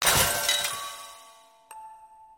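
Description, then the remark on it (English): A fired bullet shatters a music box in a sharp crash, leaving bright metallic tones ringing and fading. A small click follows, and a few thin chiming notes linger. “The gun fires, the bullet shatters the music box.”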